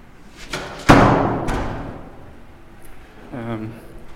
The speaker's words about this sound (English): Shutting that door.